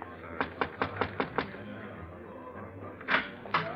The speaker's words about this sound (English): Just knock on the door, monsieur.